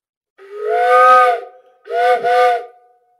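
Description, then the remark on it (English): Two loud, breathy blasts from a tunable steam whistle tuned to a high pitch like a train whistle, a longer one followed by a shorter one, each with a chord-like tone over hissing steam. No talking. “So like I mentioned, like steamboats and boats in general are the lower pitches and the higher pitches are train whistles. You could tune it up to be a train.”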